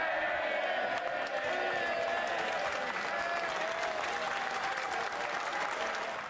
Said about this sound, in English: MPs were on their feet, cheering in the chamber